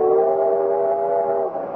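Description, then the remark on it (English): A coal-burning steam train sounds a long, steady whistle, a loud chord held for over a second before abruptly dropping away, with a faint rumble beneath and no voices. “To ride swaying and bouncing behind that iron monster with its hiss of steam and its great proud plume of black coal smoke curling away in the wind down the length of the train.”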